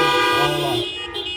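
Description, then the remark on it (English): Several car horns blare at once in a loud, overlapping chorus of sustained honks, tapering off slightly toward the end, with no one talking. Listeners in cars honk as an amen during a church sermon. “And if you're there, give me a good amen. Honk your horn.”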